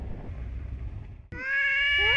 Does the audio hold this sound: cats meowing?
yes